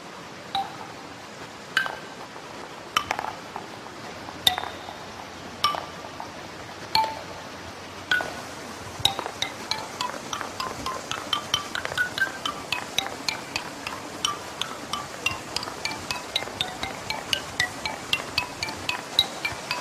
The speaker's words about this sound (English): this wooden ball is dropping on each little stand, and it has, I guess, I don't know what the details are of how it makes the little ping